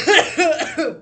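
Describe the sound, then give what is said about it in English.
Three quick, raspy coughs in a row from a person getting over a cold, fairly loud, each a short rough burst with a slightly voiced edge, tailing off after the third. “I'm getting over a cold, so there might be a couple of coughs.”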